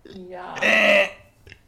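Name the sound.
burp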